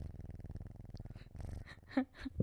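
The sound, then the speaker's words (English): A cat purrs in a low, steady, rhythmic rumble, fairly soft, followed near the end by a couple of brief higher sounds. “So meet Noah. If you're watching on video, you can see him now. He is so cute. See if you can hear him purr.”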